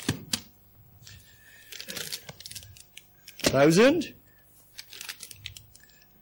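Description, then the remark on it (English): Papery rustling and soft thumps as reams of 500 sheets of paper are set down one after another, with a voice briefly counting in the middle. “So we're not going to count every single sheet of paper. So there's 500.”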